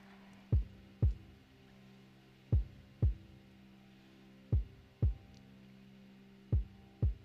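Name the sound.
heartbeat sound effect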